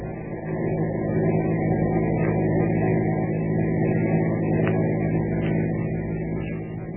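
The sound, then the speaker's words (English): A car engine drones steadily as the car drives along following a truck on the route to Overton, a constant rumble with a faint whine above it and no change in pace, with no voices. “Keep on the tail of that truck.”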